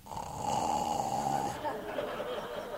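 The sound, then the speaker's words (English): A person makes a drawn-out, nasal snoring noise with the voice, a single sustained rasping snore that shifts pitch partway through, close and fairly loud with no other talk. “he hears snoring and he goes over and he pokes Wesley and Wesley falls over”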